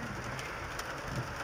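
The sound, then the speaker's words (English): Steady rain pours down in Jerusalem in a dense, hissing wash, with scattered sharper drop taps standing out now and then. No voices, just the continuous patter filling the space. “It's raining in Jerusalem.”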